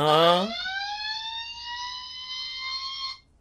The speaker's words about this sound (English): Was it a fire alarm? I think so. It was terrifying.